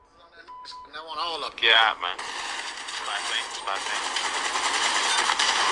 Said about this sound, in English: A lot of gunfire.